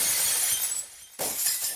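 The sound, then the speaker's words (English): A glass-shattering sound effect: glass shatters in a bright, crunchy burst, followed by a brief lull and a second splintering crash with tinkling shards, loud, no voices. “Insert a glass shattering sound right about here.”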